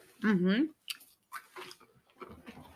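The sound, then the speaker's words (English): Wet chewing of sticky British black currant chewy Millions candies: soft squelching mouth sounds and small clicks, starting after a short hummed vocal sound, all fairly quiet. “I'm chewing on my toffee, so.”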